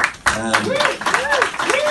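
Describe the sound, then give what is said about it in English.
Scattered clapping from about 12 people, steady and moderately loud, mixed with voices calling out or talking over it for the whole stretch. “Don't worry, there's 12 people clapping.”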